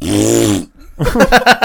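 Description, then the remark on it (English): A loud fart sound played by a Google voice assistant on request: a low, buzzy rasp lasting about half a second. After a short pause, a voice briefly speaks. “Okay, Google, play me a fart sound. And it goes, okay, this is a fart sound.”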